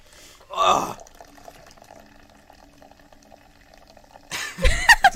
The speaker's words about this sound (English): Just stares at me and slowly re-pours the whole bottle.